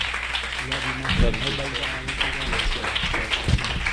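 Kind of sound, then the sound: crowd, audience applause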